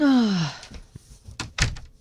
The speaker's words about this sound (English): Oh, no, she's still there. The door just closed.